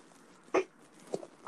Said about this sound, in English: don't tell me you don't have a dog